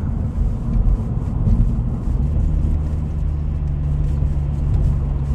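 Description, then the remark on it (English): A car's engine and tyres rumble steadily as it drives and swerves around another car that ran a stop sign, a continuous low road noise with a slight swell partway through and no one talking. “I went around them because they blew a stop sign and I wasn't just going to slam on my brakes.”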